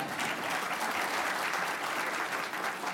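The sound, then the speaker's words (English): A large audience of members claps steadily for being members, a dense, sustained wash of applause with no pauses, at a consistent loud level for the whole stretch. “All right, now put your hands down and clap for being a member.”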